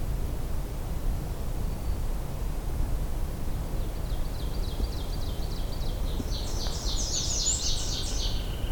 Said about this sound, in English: We got two oven birds now.